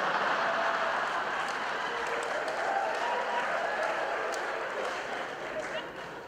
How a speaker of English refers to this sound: You too, now you're clapping.